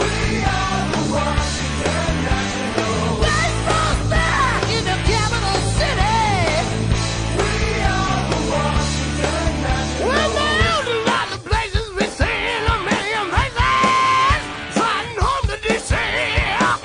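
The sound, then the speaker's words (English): A loud, blaring hard rock song about the Washington Nationals plays over the loudspeakers at Space Coast Stadium, with a dense, driving band and heavy low end under a singer wailing in long, bending notes, the mix thinning and punching harder toward the end. “Over the loudspeakers at Space Coast Stadium comes this blaring hard rock and this singer wailing.”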